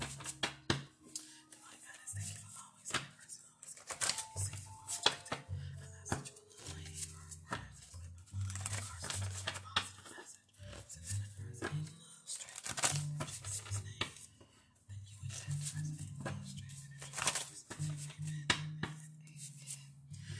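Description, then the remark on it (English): Jar cards being shuffled in a jar for a card reading, a busy stream of papery rustles, flicks and clatters in uneven bursts over a faint steady low hum. “So I'm shuffling the jar cards.”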